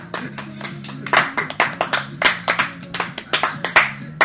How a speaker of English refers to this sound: Oh boy, guys, we made it to the end of another movie. Claps all around, yay! Clap!